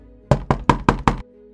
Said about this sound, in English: rather disparate members of the criminal underworld are gathered in a tiny room, several beds laying around with a small fireplace nearby crackling as a knock on the door brings their attention.